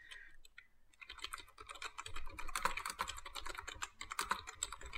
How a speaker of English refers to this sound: The loudest typing I've ever heard in my life. I was about to say. It's a touch screen, too, so I don't know how it made that sound.